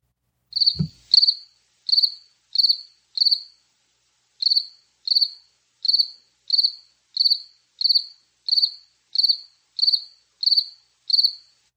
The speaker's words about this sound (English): Crickets, huh? You got crickets in your office there